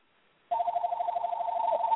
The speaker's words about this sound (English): I was like, okay, the phone's ringing. Hold on 1 second.